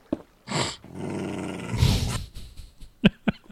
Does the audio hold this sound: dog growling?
yes